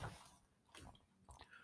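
A thirsty lioness slurps and laps water in a few wet, uneven bursts, fairly quiet, with short pauses between gulps and no voices.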